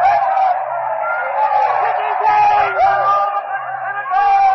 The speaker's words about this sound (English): crowd is now denouncing Decimus Brutus, all the conspirators, is calling for vengeance. Mark Antony has stepped up to the body of Caesar. He puts the covering off the body, and the mutilated body of Caesar now lies exposed. The crowd is in a frenzy.